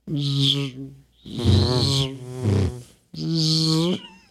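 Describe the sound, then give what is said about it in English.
A fly buzzes in three loud, steady bursts with short gaps between them. The drone is low and rough, and the middle burst wavers in pitch. No one speaks. “I don't know, like 7-Eleven, another fly.”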